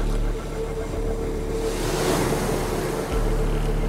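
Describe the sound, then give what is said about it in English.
Steady rushing ocean water at sea about 140 kilometres off Jervis Bay, with a broad wash of waves swelling louder midway and a low, constant engine-like hum underneath; no voices. “She was towed out to sea and set adrift about 140 kilometres off Jervis Bay.”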